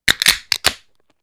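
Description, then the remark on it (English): A 6.7% beer poured vigorously, coming out in four quick, loud, hissing splashes over under a second, then fading into a faint fizz. “So that you could hear the beer pour.”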